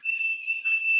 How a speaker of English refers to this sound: Sorry, I'm getting distracted by a high-pitched sound. I think my smoke detector's going off.